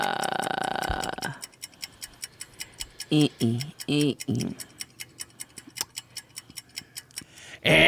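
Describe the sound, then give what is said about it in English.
A timer ticks in a rapid, steady rhythm of sharp, bright clicks, broken briefly by a couple of low, throaty vocal sounds before the ticking carries on to the end. “Can I get that timer?”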